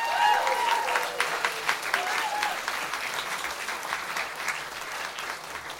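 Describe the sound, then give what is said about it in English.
An audience at a live comedy and storytelling show applauds steadily as a performer is introduced, a dense crackle of many hands clapping at once, sustained and fairly loud throughout with a few brief whistles or cheers rising above it near the start. “Guys, big round of applause.”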